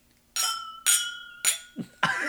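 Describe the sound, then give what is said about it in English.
Several glasses clink together in a toast, a quick series of bright, ringing chimes with lingering tones, fairly loud, followed by a short scraping clatter. “Okay, well, anyway, cheers.”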